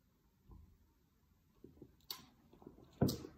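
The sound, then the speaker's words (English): Someone takes a quiet sip of beer, with soft wet mouth sounds and two sharper slurping clicks near the end. No one speaks. “I have another sip.”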